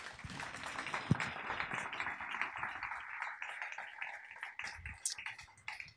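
An audience applauds steadily for several seconds as panel guests come up, including a Senterpartiet politician, the Miljøpartiet De Grønne foreign policy spokesperson and the head of international work at Norges Vel. It is a dense crackle of many hands clapping at once, even, with no voices on top.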